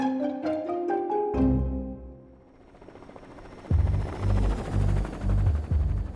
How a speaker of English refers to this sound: On a November morning in 1992, three men strapped into a small helicopter, ready to take flight. As the chopper rose